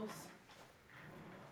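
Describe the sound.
A rolling chair's wheels rumble and scrape briefly across a hard floor, a low, muffled clatter heard fairly quietly, with faint voices in the background.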